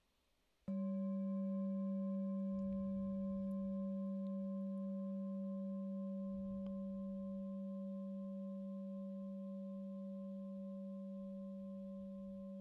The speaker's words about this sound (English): And the way that it does it is by allowing us to notice the tiny, tiny sound moving through time. So you'll be able to notice that as I strike the bell.